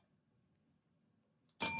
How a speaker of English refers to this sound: Little bell. I like that.